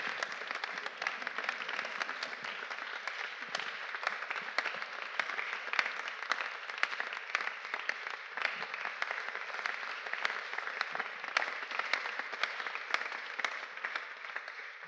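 Sustained audience applause, a dense steady wash of many hands clapping at even loudness for about fifteen seconds, with no voices standing out over it.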